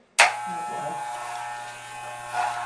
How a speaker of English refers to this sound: All right. Are we doing it? Shave it. Start the shaver.